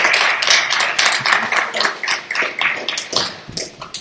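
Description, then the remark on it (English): A church audience standing to leave at the end of a service applauds: dense, steady clapping from many hands, crisp and bright, keeping up evenly for about four seconds with no voices rising above it. “Let's give Mike up some applause.”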